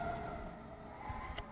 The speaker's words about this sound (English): It's a fire truck. Yeah. Yeah. It's honking. Ambulances don't honk.